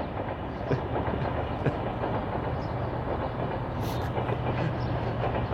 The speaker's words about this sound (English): I don't know if this train is coming through on my microphone, but it sure is loud. It was so quiet here just a minute ago.